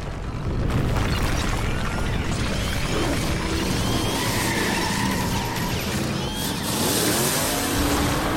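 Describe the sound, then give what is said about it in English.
A car racing down a corridor, its engine roaring loudly and continuously, the revving pitch sweeping up and down with a rough, rumbling texture and a hint of tire noise, and no voices. “It was a car, racing and roaring down the corridor, heading straight for the yellow abomination.”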